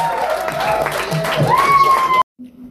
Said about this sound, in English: Anyway, let's give whoever the fuck is next round of applause and y'all hosting y'all ass off.